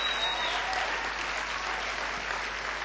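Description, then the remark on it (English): A church audience applauds steadily for the members who were there from the very beginning, a dense wash of many hands clapping at an even, sustained loudness with no pauses throughout. “Let's give them a great clap and just appreciate them now.”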